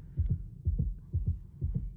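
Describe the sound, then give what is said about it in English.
A steady heartbeat thumps in low, muffled double beats, repeating about three times across two seconds, prominent with a faint hum beneath and no talking. “It's the heartbeat going.”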